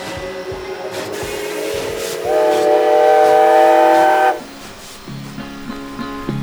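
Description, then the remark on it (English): A train whistle blows in a long, steady chord that swells louder midway before cutting off, leaving the rumble and chugging of a passing train with a few fainter toots; a train in Jackson, Mississippi, in 1929. “In 1929, he grabbed his guitar and hopped on a train in Jackson, Mississippi.”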